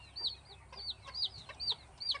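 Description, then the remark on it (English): Chickens clucking, with naturally born chicks running around being reared by their mother hens, a series of about five high, chirpy calls repeating at a steady, quick rhythm over a faint low background hum, with no one talking. “So these are chicks that you're seeing running around here.”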